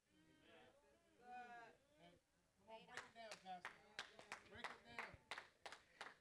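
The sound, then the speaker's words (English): Scattered, uneven handclaps from a group of people build up after a brief voice, a dozen or so sharp claps overlapping loosely rather than settling into steady applause. “I thought everybody would clap.”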